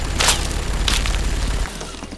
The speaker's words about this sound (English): as you see machine gun fire tearing through the building, bits of glass being smashed, nutrient-rich sludge spilling out onto the floor, and then ice. You are absolutely hailed by gunfire.